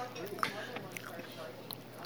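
Soft chewing of a mouthful of pie, with moist smacking and a few small clicks over about two seconds, plus faint muffled vocal sounds.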